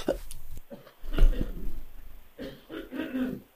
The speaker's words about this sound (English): So, excuse me, I need to cough for a second,